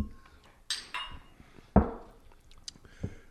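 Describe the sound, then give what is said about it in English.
Beer glasses clink together in a toast, a handful of irregular chinks and knocks with one louder, heavier clank and a brief bright ring near the end, with no voices. “Doc, we toasted.”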